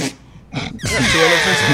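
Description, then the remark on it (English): Someone imitates an elephant's trumpet call: a short breathy burst, then a loud, sustained, wavering blare that carries to the end. “Pretty good. That's the sound.”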